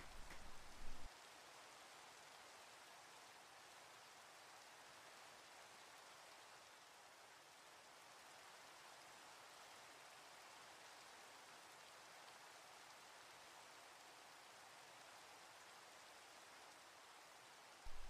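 Steady rain falling in a continuous, even hiss, heavy in the upper range with little low rumble, holding at a constant level throughout with no voices.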